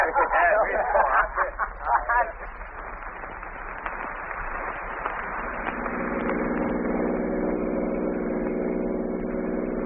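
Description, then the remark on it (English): A car engine hums steadily as the vehicle drives along a road, a constant drone that grows slightly fuller midway, with someone speaking briefly over it at the start. “pull right over here, off the road.”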